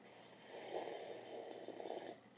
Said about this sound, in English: Hold on, let me sip this drink, huh? I heard people like to hear me sip drinks.